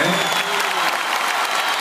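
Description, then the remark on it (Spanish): A concert crowd applauds the singer's band in a steady, dense wash of clapping that holds at an even, fairly loud level from start to finish, with no voices standing out. “Así que el aplauso para ellos que estuvieron siempre.”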